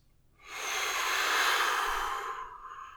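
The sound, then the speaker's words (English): A single long, slow exhale during a calming breathing exercise, an airy hiss lasting about two seconds that swells quickly and then gradually fades out, with no talking. “Don't blow your air over here.”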